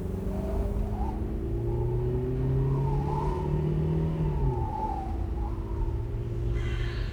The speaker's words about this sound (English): I hear a kind of rattling again. Should I stop and check if something's wrong? I don't know a lot about cars, but I'm going really fast, so maybe I'm about to break something.